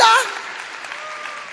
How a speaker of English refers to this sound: Clap for Abraham. Clap for Abraham.